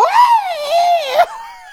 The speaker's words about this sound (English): You know, because that's how I react to Christmas Day. I shove my fist in my mouth and scream.